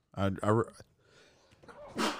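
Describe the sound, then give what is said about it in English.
Two short, strained voiced bursts like a building sneeze, then a quiet pause and a sharp breathy hiss at the end, a single loud sneeze with no talking over it, put down to seasonal weather changes rather than COVID. “Oh, God bless you, sir.”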